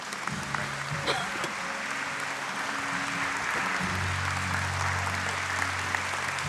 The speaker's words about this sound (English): I want you to stand and come and stand across the front of the auditorium. Clap it up as these come.